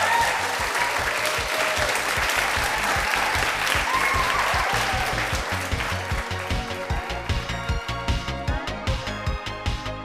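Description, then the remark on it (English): A theatre audience at Bats Theatre in Wellington, during the New Zealand Fringe Festival, claps in a dense, sustained final round of applause for the show's guests over a steady musical beat. The clapping thins out after several seconds as the music takes over. “Please can we give them one last big round of applause.”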